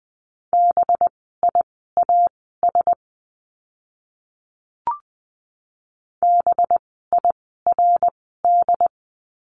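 Morse code tones at 20 words per minute spelling out a word, from a lesson practising the letter B: crisp, steady mid-pitched beeps in quick runs of dots and dashes, sounded twice with a pause between that holds one brief soft pop.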